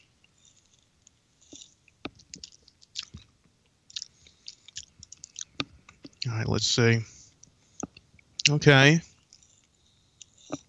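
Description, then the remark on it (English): Quiet sipping and tasting of a first sip of Thunderbird Hard Citrus Brew from a just-opened can: soft lip smacks and wet mouth clicks scattered over several seconds, with a man speaking briefly twice in between. “Yeah, you gotta get that first sip and see what it tastes like.”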